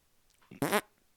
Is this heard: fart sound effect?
yes